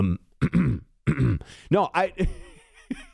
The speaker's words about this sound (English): He would clear his throat in the middle of that.